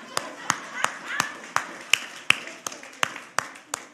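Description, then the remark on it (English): Steady, rhythmic hand clapping, about a dozen sharp claps spaced evenly at a brisk pace, with a faint murmur of background voices underneath. “I'll clap.”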